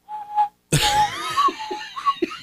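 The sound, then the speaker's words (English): Someone whistles a few short notes of the Old Spice deodorant commercial jingle, then the tune breaks off into loud laughter with breathy bursts. “Start whistling the Old Spice song.”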